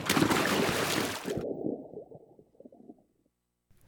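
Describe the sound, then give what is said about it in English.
A big splash as someone does a cannonball jump into a bubbling hot tub, followed by muffled, gurgling water sloshing that fades out over a couple of seconds. “Cannonball!”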